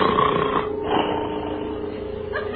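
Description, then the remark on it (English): A door creaks slowly open, inch by inch, in one long, drawn-out groan, its wavering pitch holding steady for a couple of seconds with no voices over it. “Slowly, inch by inch, the door creaks open.”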